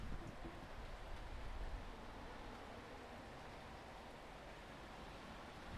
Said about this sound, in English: Ooh, that was a good gust. I hope it didn't disturb you too much. And the sock is doing its job.